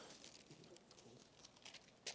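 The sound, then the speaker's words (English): Soft, scattered rustling of many Bible pages being turned at once as people look up John 16, quiet, with brief papery flicks and crinkles overlapping and no talking. “Great to hear pages turning.”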